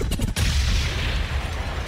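A loud gunshot with a sharp crack, followed by a heavy, rumbling echo that rolls on for a couple of seconds. No voices are heard.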